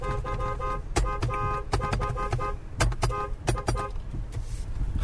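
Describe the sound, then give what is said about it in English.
A car horn honks repeatedly in a quick run of short, bright, buzzing beeps, loud over a low engine rumble, then a few scattered transient clicks as the honking trails off. “She doesn't like when we beep at her like that, but what are you going to do?”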